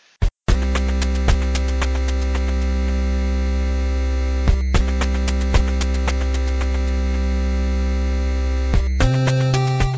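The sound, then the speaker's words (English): A Ghost Striker X-16 toy jet fighter's electronic sound effect plays as a loud, steady, buzzy drone, briefly cut by clicks a few times, then shifting to a slightly different tone near the end. No one speaks. “It's nightfall in Africa, and it's time for the Ghost Striker X-16 to take the skies.”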